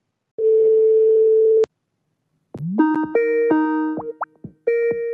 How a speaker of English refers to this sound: The person whom you're trying to reach is currently unavailable. Please leave a message after the beep.